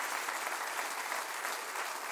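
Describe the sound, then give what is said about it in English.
A church audience applauds steadily, a dense wash of many hands clapping at once with no individual claps standing out, holding at an even level throughout. “Would you clap your hands and say, "I'm proud of a part of the church"?”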